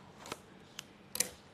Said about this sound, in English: we got some scissors. We're opening this up.